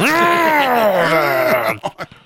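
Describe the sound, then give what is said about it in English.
A person makes a long, low, wavering growl, imitating the monster Doomsday, sustained for nearly two seconds before trailing off into a few short breathy grunts. “So he just kind of growls, grunts.”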